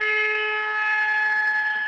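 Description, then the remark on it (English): A car horn blares in one long, unbroken honk, a loud, steady, buzzy tone that holds for about two seconds with no talking over it, sounded to signal arriving emergency responders. “Wave your arms and honk your horn.”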